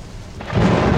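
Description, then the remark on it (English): A loud thunder crash in a rainstorm breaks in halfway through and swells into a deep, heavy rumble over a steady hiss of rain, with no voices. “Yeah, there's the big crash. And then the decay.”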